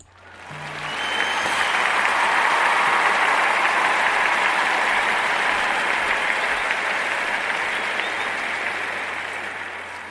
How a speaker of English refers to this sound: So let's give her a round of applause for work well done.